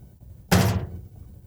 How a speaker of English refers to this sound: I just assassinated a wasp.